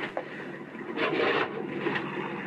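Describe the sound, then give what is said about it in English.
A wooden drawer, the one where the Cape Star was kept, slides open with a dry, grinding scrape that swells loudest midway, then trails off into a softer, steady rub. No one speaks. “That drawer where I kept it.”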